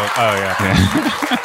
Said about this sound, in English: We get some hand claps for that.